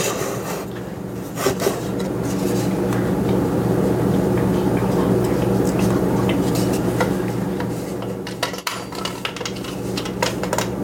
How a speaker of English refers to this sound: And I'm going to set my old-fashioned Braille timer for 40 minutes.